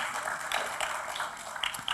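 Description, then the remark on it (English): On Mother's Day, a crowd claps together for the mothers present in a steady, dense patter of many hands, holding an even level for the short stretch with no voices over it. “Can we give a round of applause for all of the moms that are present among us?”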